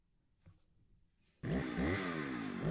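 After a second or so of near silence, a loud car engine sound effect from an app suddenly roars to life and revs, its buzzing pitch rising and falling for over a second.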